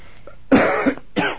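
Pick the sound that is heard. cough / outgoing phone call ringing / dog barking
cough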